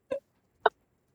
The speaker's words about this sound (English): Where are the chickens? Where is is the live market?